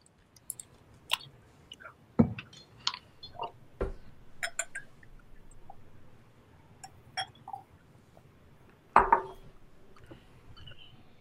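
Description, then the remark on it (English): Clinks and taps of a Riedel red wine glass during a whiskey tasting, a handful of sharp, irregular knocks scattered over several seconds with soft handling noise between them and no talking. “Just for all the viewers at home, too, let me try to ASMR.”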